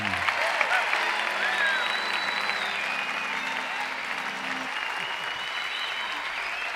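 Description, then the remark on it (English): Sustained audience applause for a singer at a live taping of Riders Radio Theater at the Emory Theater in Cincinnati, Ohio: a dense, steady wash of clapping from a large crowd that holds at an even level for several seconds, with a few faint whistles and tonal notes mixed in. “Ladies and gentlemen, another big Western round of applause for ….”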